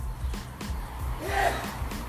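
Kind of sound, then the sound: human body sound, sneeze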